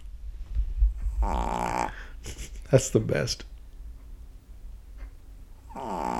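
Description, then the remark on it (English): A female chihuahua snores while asleep: two raspy, buzzing snores close to the microphone, one early and one at the very end, with a person speaking briefly in between. “That's the snoring chihuahua.”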